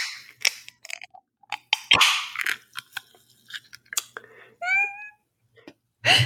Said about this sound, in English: A can of soda water.